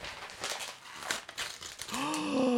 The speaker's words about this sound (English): Let me get the paper off here. You did a beautiful job wrapping this.